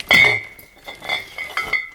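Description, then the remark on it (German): Glass schnapps bottles, wrapped in towels, clink together in a suitcase, a sharp ringing knock at the start followed by several lighter, irregular rattles and chinks as they shift. “Dazu brauche ich den Koffer. Da sind Schnapsflaschen drin.”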